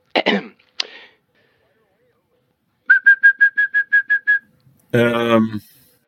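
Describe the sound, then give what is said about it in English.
A throat clearing and a click, then a quick even run of about ten identical high whistled notes, a human imitation of a European song thrush, ending in a short, buzzy, voiced squawk. “And now, the European song thrush, who usually sings in pairs from the tops of the trees.”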